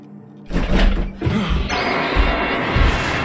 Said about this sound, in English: And the door flies open, and something comes running into the house screaming.